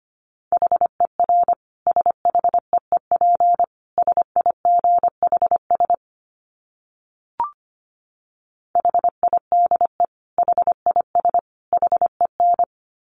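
Morse code at 25 words per minute: a single steady mid-pitched tone keyed into quick dots and dashes, in two runs separated by a silent pause broken by one soft click.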